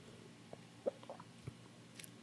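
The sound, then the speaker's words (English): Someone takes a big sip of cold liquor: a few soft, wet mouth clicks and a quiet swallow, with no one talking. “I'm going to take a big old sip.”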